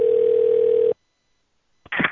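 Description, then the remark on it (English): A steady, single-pitched telephone tone, as a call to the Guy Hotel and Spa on the banks of the Sacramento River is transferred to the operator, holds for just under a second, then cuts to silence before a brief burst of noisy sound begins as the line connects. “Hello, and thank you for calling the Guy Hotel and Spa, located on the banks of the Sacramento River. You are being transferred to the operator.”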